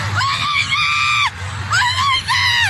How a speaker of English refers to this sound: The cheers and marching of a Wisconsin Christmas parade, a tradition here for nearly 60 years, turning to screams and chaos.